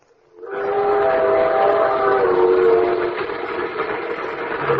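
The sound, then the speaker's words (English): A ski train rumbles along steadily while its whistle blows a sustained, multi-tone blast for a couple of seconds, the heavy clatter continuing loud after the whistle fades. “Who likes ski trains?”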